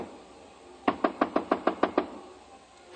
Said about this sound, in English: On my way to the elevator, I got a sudden impulse. I stopped in front of room 300 and knocked.